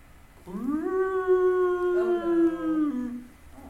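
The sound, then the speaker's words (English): A long, drawn-out werewolf howl rising and holding steady, then splitting into a second overlapping howl before fading, heard from a distance with no talking. “As howls sound off around you.”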